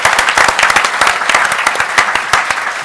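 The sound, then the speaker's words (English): An audience applauds a panel team at a City Club forum on public markets, many hands clapping in a dense, crackling wash that stays fairly loud and even throughout, with a few sharper individual claps standing out. “Let's give a round of applause for the team.”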